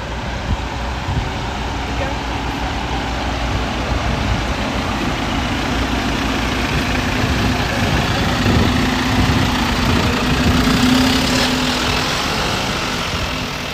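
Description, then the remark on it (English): A large tour bus engine idles in a steady, continuous low rumble with a faint droning hum, while muffled voices murmur in the background. “I love the tour buses. I always go up.”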